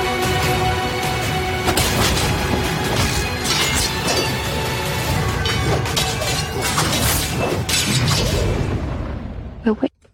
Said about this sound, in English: Notice also that kind of lovely signature sound of like a detuned church bell.